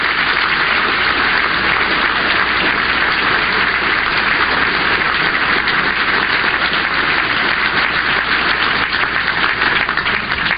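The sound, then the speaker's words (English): A large crowd gives a standing ovation, applauding loudly and continuously, hundreds of hands clapping in a dense, steady roar that fills the room for the full length without letting up. “Standing ovation.”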